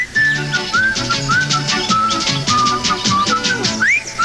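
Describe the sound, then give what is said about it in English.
A bright whistled jingle melody from an Irish Spring soap commercial, with short sliding notes, played loud over an upbeat instrumental backing, with no talking. “Fresh and clean as a whistle, that's Irish Spring.”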